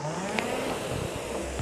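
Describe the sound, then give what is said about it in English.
A rowing machine flywheel whirs at about 18 strokes a minute with a steady, loud whooshing rush over a low droning hum, continuous throughout with no one speaking. “Follow me on the video for stroke rate, or listen to the whoosh of my flywheel on the podcast and you should be okay.”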